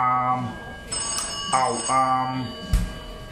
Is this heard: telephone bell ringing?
yes